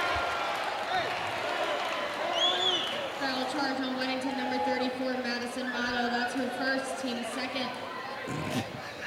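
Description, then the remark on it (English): A basketball arena crowd cheers steadily throughout, a dense wash of roaring voices with sustained shouts rising above it, staying loud and unbroken for the whole stretch. “Boy, the crowd's really into this, aren't they?”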